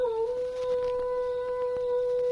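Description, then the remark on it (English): A voice imitating a wolf howl as a signal, given at a guarded camp soon after moonrise: one long, steady, sustained tone that dips briefly at the start and then holds, loud and clear against a quiet background. “As yet unaware of Tonto's plight, he signaled for the Indian to join him, imitating the howl of a wolf.”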